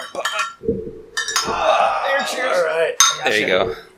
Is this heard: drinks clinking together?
yes